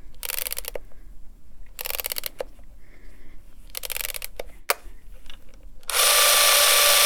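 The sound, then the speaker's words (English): A wound-up, spring-loaded clockwork film camera runs at quite a high speed, whirring in several short bursts of rapid mechanical clatter, separated by pauses and small clicks, ending in a louder sustained whirring run. No one speaks. “It's running at quite a high speed there, but you can alter the speed on it.”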